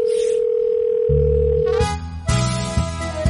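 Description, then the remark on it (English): A steady, unbroken telephone dial tone hums clearly for nearly two seconds at the start of a recorded prank call about a Halloween costume, then cuts off as a bright burst of music with a deep bass line takes over. “So we already made the prank call.”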